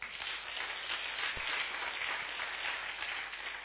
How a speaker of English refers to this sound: I love all of you. Worship team, thank you. Can you give them a clap?